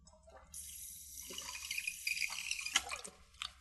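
Someone takes a brief drink of water, with a few seconds of steady, hissing liquid and splashing sounds and small clinks. No one speaks.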